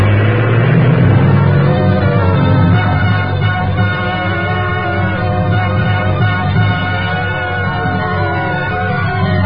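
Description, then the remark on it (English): A heavy bus engine rumbles loudly, revving and rising in pitch at first, then settling into a steady, droning roar as it pulls away. Nobody speaks. “Get this bus rolling.”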